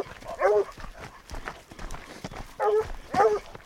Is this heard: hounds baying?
yes